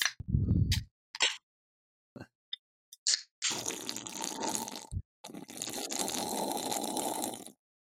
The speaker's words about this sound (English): Whoever cracked that can had a really good echo to it. That was mine, and I forgot it wasn't in the fridge long enough, so it's like room, almost room temperature Coke Zero.